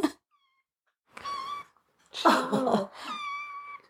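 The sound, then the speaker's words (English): A domestic cat meows three times in close succession, each call drawn out and fairly loud, with the middle one harsher and more insistent; there is no talking, just a brief click at the start. “Herb wants to be heard. Hear me roar.”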